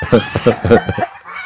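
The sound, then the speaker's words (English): Chickens cluck close to the microphone in a quick, rhythmic series of loud, throaty calls, then fade into quieter background clucking. “There's one chicken that's right up by the microphone.”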